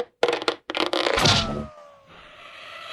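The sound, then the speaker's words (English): An arrow strikes and buries itself in a target: a few sharp, splintering cracks and a scraping thud, then a fading, falling tone over a low hiss. No one speaks. “A sound of an arrow burying itself into whatever.”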